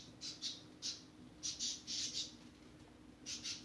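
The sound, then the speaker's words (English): Pet birds make soft, dry clicking sounds in short irregular pairs, somewhat like faint footsteps, over a low steady hum with no talking. “I mean, like, they make clicking sounds that sound like footsteps.”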